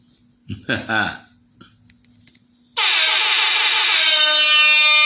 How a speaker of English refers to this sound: Let me sound off that alarm one time for the one time.